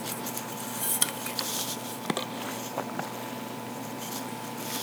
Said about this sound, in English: One sec, I need a drink of water.